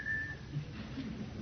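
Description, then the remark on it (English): A person mimics a whistling tea kettle with one short, steady, high-pitched whistle that holds briefly and then trails off into low, muffled background noise. “if you want a tea kettle to whistle fast, don't put much water in it”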